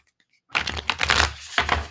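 A deck of cards being shuffled, a fast crackling riffle of papery flicks that starts abruptly after a brief silence and continues in dense bursts until the end.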